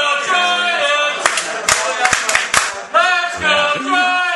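Loud, sustained shouting voices cheer together over the Giants winning the World Series, while a few sharp, scattered claps break through in the middle of the cheer.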